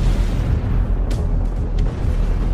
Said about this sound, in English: I launched nuclear explosives at the vessels and ordered them to detonate.